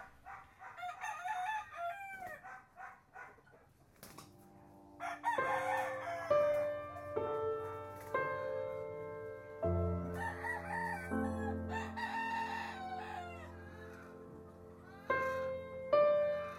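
Fighting roosters crow loudly and repeatedly, several overlapping cock-a-doodle-doos rising and falling, with a steady sustained tonal drone running underneath from partway through.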